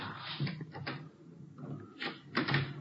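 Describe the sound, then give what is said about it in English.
The handle of a back door at the rear of a hotel is rattled and jiggled a few times, followed by the clunk and creak of the door being pulled open, with no one speaking. “Now look, the stains lead over this way to the back door here. Let me try.”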